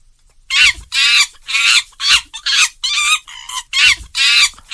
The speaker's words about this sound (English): That's definitely a monkey.